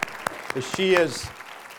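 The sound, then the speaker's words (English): An audience applauds the speaker's wife, who is seated at the back of the audience, with scattered sharp claps across a short stretch and a brief vocal sound rising over the clapping midway through. “So I think we should applaud her.”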